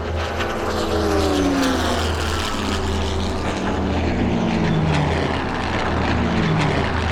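A steady, loud drone of an old propeller plane's engine in flight, with a deep low hum and shifting harmonic whine rising and falling throughout, no voices present.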